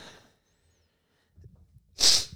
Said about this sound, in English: I was trying not to sneeze there. Sorry about that.